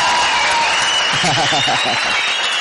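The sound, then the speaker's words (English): A burst of applause sound effect: dense, steady clapping fills the whole clip at a loud, even level, with a voice briefly audible beneath it midway through. “You know, I like the little applause in the background. Let me get another one of those, man.”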